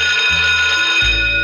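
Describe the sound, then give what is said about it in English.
A bell rings loudly and continuously, a steady, shrill metallic ringing that holds for the whole moment, with a low hum shifting underneath and no voices. “That's the bell.”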